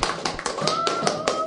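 Steady, rapid clapping, about five sharp claps per second, fairly loud and even, with a faint high tone humming underneath.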